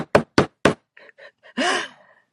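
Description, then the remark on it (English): Three loud, evenly spaced knocks on a front door, followed by a few faint muffled bumps and then a brief, wavering, breathy sound that swells and fades. “I got on a plane, and I showed up at my ex's front doors. We got sound effects.”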